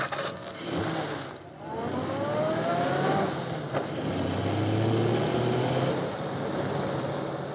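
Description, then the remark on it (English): A car engine accelerates steadily on a highway, its pitch climbing twice over a constant rush of road noise, loud throughout with no voices. “Step out and crawl him over to the side of the road so he'll have to stop.”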